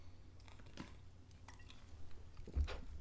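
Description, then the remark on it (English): A quiet sip from a drink, with a few soft wet mouth clicks and a swallow scattered across the moment, a slightly louder slurp near the end, and no talking. “Sorry, I had to take a sip.”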